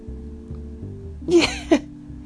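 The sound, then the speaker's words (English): Two quick, harsh coughs, the first slightly longer, a fraction of a second apart, over a low steady hum, with no talking. “Well, I'm coughing now.”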